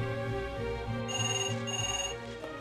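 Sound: telephone ringing unanswered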